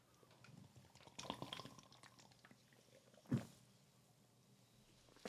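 Someone drinks beer from a can, with soft liquid sloshing and gulping noises followed by a sharp knock, like the can being set down. No one speaks.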